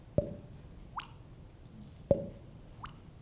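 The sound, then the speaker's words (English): Water pushed out of a mouth by the tongue makes two wet sequences, each a sharp click followed a moment later by a rising, bubbly plop, with no talking. “You push your tongue forward and it pushes the water out.”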